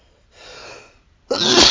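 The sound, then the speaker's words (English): A single loud sneeze caused by seasonal allergies: a breathy inhale builds up, a brief pause, then a sharp explosive burst of air. No talking. “Bless you.”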